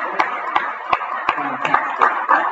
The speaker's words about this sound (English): We give them a clap.